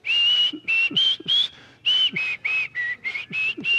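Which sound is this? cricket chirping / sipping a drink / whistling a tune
whistling a tune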